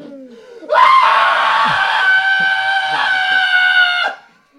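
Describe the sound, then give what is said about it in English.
A single long, loud, high-pitched scream held steadily for about three seconds, piercing, as a person mimics screaming at the very peak of a roller coaster ride, then cutting off abruptly. “He's riding a roller coaster with my fucking dad, screaming his fucking head off.”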